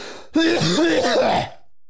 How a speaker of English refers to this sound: Highly contagious. Yeah, he's been coughing on me all day.